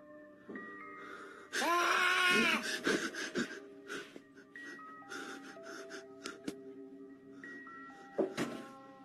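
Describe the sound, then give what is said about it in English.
A man lets out one long, loud, wavering scream inside a house, then quieter, broken cries follow and one last short yell near the end, over a faint steady hum. A homeowner home alone late at night filmed it on a phone while investigating what sounded like an intruder. “A homeowner discovers a man screaming.”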